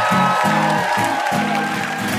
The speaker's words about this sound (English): One last round of applause for our VIPs, Joseph Fink, Jeffrey Craner, and Cecil Baldwin.